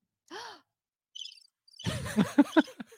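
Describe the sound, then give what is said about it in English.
A short burst of high, rapid cricket chirps plays in near-silence, followed by a loud, breathy vocal sigh with choppy bursts. “So, I like how we introduced the crickets.”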